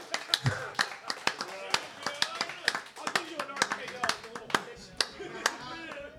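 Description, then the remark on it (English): Scattered, reluctant handclapping from a few people for a quiz winner receiving a Funko Pop prize, sharp irregular claps rather than steady applause, with voices talking and laughing underneath throughout. “I will reluctantly applaud.”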